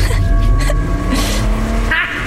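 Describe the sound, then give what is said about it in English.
Car engines rumble steadily at a car dealership, with a rising tonal whine as driverless vehicles roll toward the listener, ending in a brief hissing swish. “Those cars are moving towards us, and no one's driving them.”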